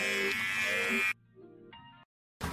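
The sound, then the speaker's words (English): A loud, steady buzz of a Manscaped electric body trimmer with a bright, dense hum runs for about a second, cuts off abruptly, then fainter tonal sputters follow before silence and a brief burst resumes. “I hope you don't know I'm about to use his Manscaped.”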